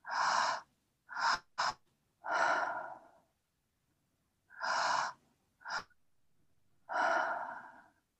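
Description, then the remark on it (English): Several loud, forceful breaths of an active breathing exercise, each a broad noisy rush, some long and some quick and sharp, repeating in an uneven rhythm with short pauses between. No talking. “So we can feel the belly move, feel the chest move, and then on that exhale, so just another few breaths like this.”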